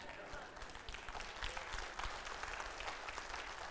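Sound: audience applause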